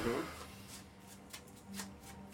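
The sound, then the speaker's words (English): Quiet, papery rustles of a deck of cards being shuffled, a few brief riffling bursts spread over a couple of seconds, with a short murmur of voice at the start and a low background hum. “Would you like to shuffle it?”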